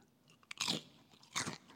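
Two crisp, loud crunches of potato chips being bitten and chewed up close, with a small click before the first, alone without talk and with a faint roomy echo.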